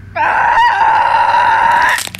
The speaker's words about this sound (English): screamed in the darkness until she was abruptly silenced.